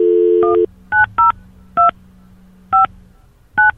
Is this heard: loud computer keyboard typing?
no